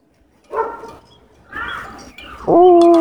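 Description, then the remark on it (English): A puppy gives three loud vocal bursts: two short whiny yelps, then a longer, steady howling cry at the end. No talking. “Hello, puppy.”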